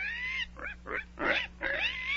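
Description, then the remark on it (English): A pig grunts and squeals in a quick run of about five fairly loud bursts, some rising into high, whiny squeals, with no talking over them. “Well, there's no mistaking it now. You are turning into a pig.”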